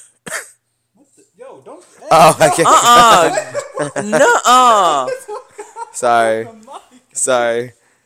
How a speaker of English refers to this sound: That was pretty bad. I was doing it for like comedic purposes, but I realized you can't cough on a mic. I was trying to make ASMR coughing, you know.